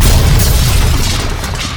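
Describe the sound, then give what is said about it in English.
A loud, steady roar of an airplane flying low over the Discount Budget Airport Motel in Denver, heavy rumbling bass with a broad whooshing hiss above it, easing off slightly toward the end. No voices. “Don't worry about the airplanes flying over. You'll only hear them every 5 minutes.”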